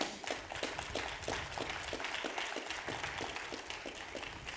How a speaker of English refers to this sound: Yeah, give him a hand clap on that.